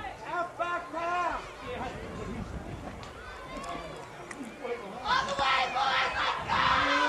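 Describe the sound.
Excited Wayne fans yell and shout over a noisy crowd at a game, with several overlapping voices rising and falling, then swelling louder and more intense toward the end.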